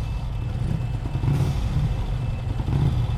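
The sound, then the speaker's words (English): Many motorcycle engines rev in a steady, rumbling drone with a couple of louder surges, with some rattling clatter mixed in, coming from the other side of a pile of junk. No one speaks. “I'm more interested in that revving sound. It seems to be coming from the other side of this pile.”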